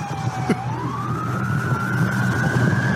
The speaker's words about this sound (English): That's a normal siren.